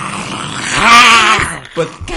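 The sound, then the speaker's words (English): A mighty creature stepping through the woods roars over a rushing, noisy backdrop, one loud rough bellow of about a second, then trails off into a brief, fainter grunt. “And as you're discussing this, you hear a mighty roar and stepping through the woods.”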